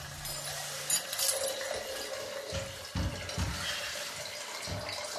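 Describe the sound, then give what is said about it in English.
Water pours steadily into a hot water bottle, a continuous splashing fill with a few brief knocks and gurgles, moderately loud, no one speaking. “Is that my hot water bottle you're doing there, Solander?”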